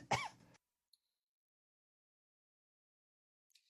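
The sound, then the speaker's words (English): A single short throat-clearing cough bursts out at the start, followed by near silence with a faint click and a brief soft rustle near the end. “Sorry. Cough button.”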